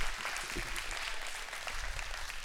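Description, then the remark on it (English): A church audience gives the Lord a hand clap of praise, many hands merging into a dense, even wash of applause that holds at a moderate level for the whole stretch, with no voices rising above it. “Someone give the Lord a hand clap of praise about that.”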